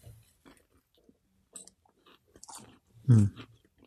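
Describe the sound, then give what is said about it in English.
Chewing and crunching on the crisp pastry of a glazed, hot water crust pork pie, with scattered small bites building to one loud, sharp crunch near the end, no talking. “Good chewing sounds. The pastry is insanely good. It's almost like a biscuit.”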